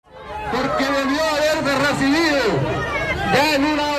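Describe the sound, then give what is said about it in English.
A protest crowd in front of the finance ministry in the capital of El Salvador, mostly military and former guerrilla veterans, some army veterans in uniform, chanting against the government, roars steadily, many voices shouting and chattering over one another in a dense, loud babble that stays constant throughout, with a few raised voices rising above the mass. “It was a protest.”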